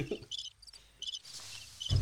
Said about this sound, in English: Just gave himself some crickets.